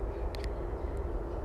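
A steady, low rumbling roar of an airplane passing overhead, recorded outdoors right next to an airport, droning evenly throughout with no voices, while a few brief high chirps flick over the top.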